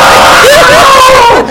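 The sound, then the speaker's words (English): A voice loudly imitates a screaming baby girl, letting out a short run of rising, wavering wails that blur into one continuous cry against a dense, noisy background. “It's because you didn't see her when she was screaming.”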